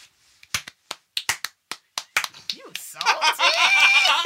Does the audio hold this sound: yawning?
no